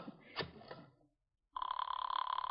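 After a brief muffled voice and a moment of silence, a telephone at the Fifth Precinct starts ringing, a loud, steady trilling bell that keeps going to the end.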